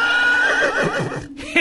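A horse whinnies loudly, a shrill, wavering neigh that slides downward for over a second before breaking off, with no voices present.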